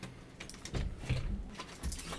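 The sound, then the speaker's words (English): Real keys jangle and clink in a real door lock, a few quick bursts of bright metallic rattling spread over a couple of seconds with no talking. “Do you like the key jangle? Those are real keys.”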